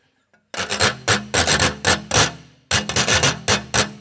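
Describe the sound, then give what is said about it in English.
A metal whisk scrapes across a wavy crimped washboard in quick rhythmic strokes, each pass a bright, raspy ratcheting burst, with a short pause midway before the scraping resumes. “This is the wavy crimp with the whisk.”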